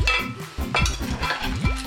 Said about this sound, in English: After a few minutes of sauteing the meat and the onions, I'm ready to add my beans. And my barley. Give it a good stir.